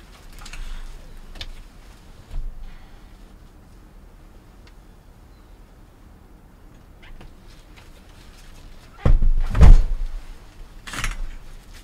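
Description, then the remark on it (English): A door that had been propped open is pushed shut with a loud, solid thud near the end, preceded by some shuffling and handling noises in otherwise quiet surroundings. No one speaks. “I'm going to shut the door.”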